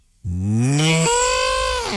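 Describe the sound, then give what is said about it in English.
A person's voice imitates a cow, letting out one long, loud, strained moo that starts abruptly and holds steady for nearly two seconds, harsh and growling like an angry animal. “That's pretty good. That's an angry cow.”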